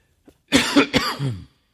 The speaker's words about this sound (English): I've been fighting kind of a cough, so I'm a little anxious that my cough is going to come up at different times.